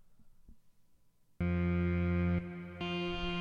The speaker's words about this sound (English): I like to say that reverb is a synthesizer's best friend, I'll tell you that. You can really create an atmospheric sound with reverb. And then maybe even throw in a little bit of delay. That's always interesting.